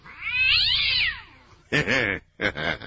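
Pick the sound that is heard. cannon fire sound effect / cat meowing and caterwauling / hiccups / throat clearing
cat meowing and caterwauling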